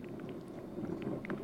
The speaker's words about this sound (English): You can hear the wind, gusts.